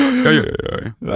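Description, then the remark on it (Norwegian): A voice makes a rough, croaking inhaled "ja" that sounds like a zombie groan, low and gravelly with a strained pitch, followed by a short pause and a breathy restart. “Jeg synes det morsomt å si sånn ja, innover, for det det gamle damer gjør.”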